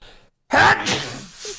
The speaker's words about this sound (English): Just gotta sneeze. Hold on.